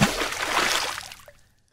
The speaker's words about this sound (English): In the sea you go, sabloosh.